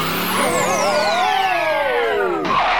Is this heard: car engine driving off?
yes